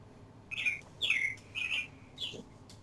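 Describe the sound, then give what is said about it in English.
A bird chirps four times in quick, slightly uneven succession, bright high-pitched notes over a faint low background hum, with no one talking. “there's birds also feel that way about Anthem. Are you in a bird cage right now”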